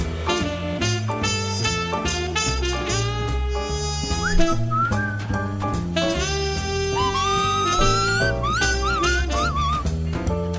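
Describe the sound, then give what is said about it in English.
A person whistles a wavering lead melody over a full, steady music track, the whistled line rising and bending in the second half; no one speaks. “I had a little lead whistle going on there.”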